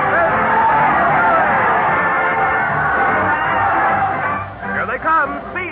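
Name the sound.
crowd cheering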